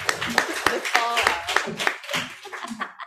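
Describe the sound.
An audience at a poetry reading applauds a reader with a burst of scattered, sharp hand claps lasting a few seconds, while voices call out and talk over the clapping.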